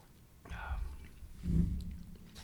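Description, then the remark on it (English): A soft sip of whiskey: a brief wet slurp, then a low muffled bump, with no talking. “Let me get a little sip again.”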